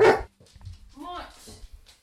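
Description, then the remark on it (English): A large white German Shepherd at a home in Sheffield lets out one loud, sharp bark, then keeps up a rumbling growl mixed with short whiny vocal sounds for the next second or two. “What are you growling about?”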